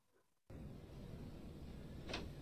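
Handcuffs being removed: after a brief quiet moment, a steady rattling, scraping noise starts abruptly and continues, with one brighter metallic clink near the end. No one speaks.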